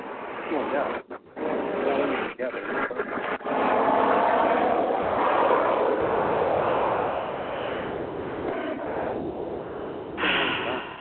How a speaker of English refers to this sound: Sounds like a plane. That was a big old jet airliner.